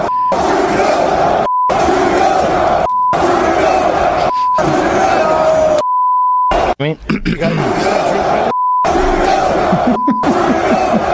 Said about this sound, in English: So here's Joe Rogan reacting to the crowd's anti-Trudeau chant.